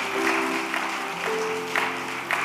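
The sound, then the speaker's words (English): An audience claps steadily together as a clap offering to the Lord during a sermon, a dense wash of hand claps with a sustained keyboard chord humming underneath and no one speaking. “Then give the Lord a good clap offering.”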